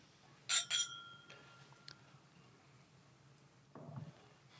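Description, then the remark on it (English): Two quick, bright glass clinks ring out close together as glasses of bourbon are touched in a toast, leaving a brief ringing tone, then a soft low murmur near the end. “I'm going in. Cheers. Cheers. To the bourbon.”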